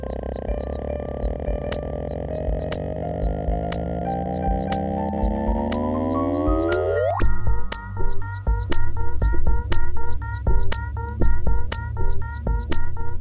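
Instrumental electronic music released shortly after scientists announced the discovery of gravitational waves: a layered tone sweeps steadily upward over a low drone, then gives way to a pulsing rhythmic section with regular ticking percussion. No voices.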